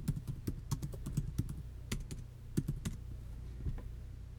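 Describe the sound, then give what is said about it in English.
Rapid, uneven clicking of keys on a computer keyboard, fairly loud, with bursts of keystrokes and short pauses over a low steady hum, as someone types a Google search; no one speaks. “I'm literally gonna Google that right now. Excuse the typing.”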